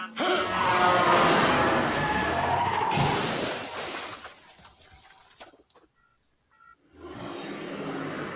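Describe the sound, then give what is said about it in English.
A car driven by Batman roars and whips around, its tires skidding loudly for a few seconds, then the noise drops to a low rumble and near silence before engine noise surges back in. “Shot a Batman whipping a brick with that fucking car.”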